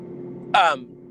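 A car's steady low engine drone runs throughout, broken by a brief, loud, harsh roar with a rising, buzzy tone that lasts about a quarter second before dropping back to the hum.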